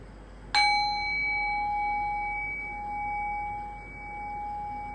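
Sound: meditation bell being rung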